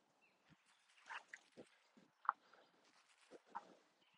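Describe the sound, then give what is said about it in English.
A golden retriever approaching snuffles, pants and gives short grunting snorts in irregular bursts, with no one speaking. “There was a beautiful, beautiful golden retriever that was just stood very much on his own for a while”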